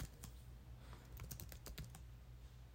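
Rapid, irregular clicking of keys on a computer keyboard as someone types in the names of American football teams, a quick burst of typing over a low steady hum, with no voices.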